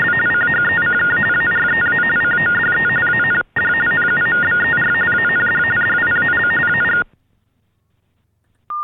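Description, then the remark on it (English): Loud, rapid warbling telephone signaling tones for the hearing impaired, played after an invalid-number recording, alternating between two pitches over a band-limited phone line, with a brief break mid-stream, then near silence before a single steady tone begins. “The following tones are for the hearing impaired.”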